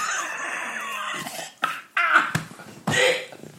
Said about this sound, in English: Jesus Christ. I've had a terrible cough.